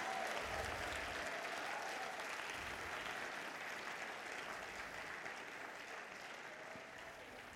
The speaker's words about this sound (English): Go on, give God a clap offering.